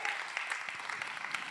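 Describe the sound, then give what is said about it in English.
An audience claps together in praise of God in a dense, steady burst of applause, many hands overlapping into a continuous wash of sound with no voices standing out. “Come on, if you believe that, give God a big clap of praise.”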